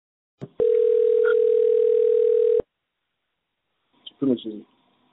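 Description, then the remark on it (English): A steady telephone dial tone hums loudly for about two seconds after a click, then cuts off; after a pause, a brief burst of voice follows. “I'm going to give him a phone call, and I'm going to call him that way, so that way we'll record it that way.”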